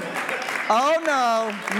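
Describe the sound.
Light, scattered audience clapping fills the opening moment, then a loud drawn-out voice with a rising and falling pitch cuts in over the fading applause.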